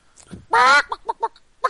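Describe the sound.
A person imitates a chicken with their voice: one loud, strained squawk followed by a few short, choppy clucking bursts.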